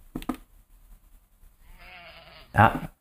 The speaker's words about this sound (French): Des petits moutons, hein?